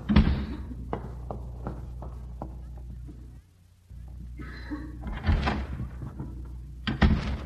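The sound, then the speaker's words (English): A door slams shut with a sharp thud as Mr. Haney leaves, followed by shuffling movement and a few softer knocks and bumps against a steady low background hum. “Well, I couldn't see him from where we were hiding, but I heard the door slam.”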